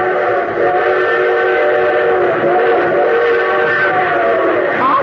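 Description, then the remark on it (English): A train whistle blows in a long, steady, loud wail over the rumble of an approaching train in light rain, the train set to pass within a mile and a half, the sustained tones filling the whole stretch with no voices. “But a train whistle sounds closer.”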